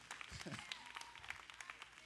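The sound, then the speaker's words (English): Scattered handclaps from about three people at a church service, uneven and thin, spread across a couple of seconds, with a brief murmur of a voice early on. “Yeah, I thank all three of y'all's golf cart court claps.”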